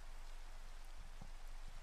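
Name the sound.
rain falling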